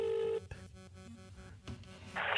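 A phone being dialed: a steady electronic tone cuts off, then a run of short beeps and tones follows before a loud, harsh burst at the end. No one speaks.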